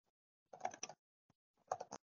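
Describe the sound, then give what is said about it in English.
Typing on a Surface Pro keyboard while Googling: two short bursts of quick, clicky keystrokes separated by a brief pause, quiet, with no voices. “That's me typing on my Surface Pro, I apologize.”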